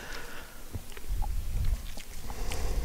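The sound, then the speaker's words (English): Moist chewing with soft irregular smacks and clicks over a low rumble; someone eating fresh sushi topped with a little scallion and jalapeño, with no one talking. “When I chew, someone's got to talk on the radio.”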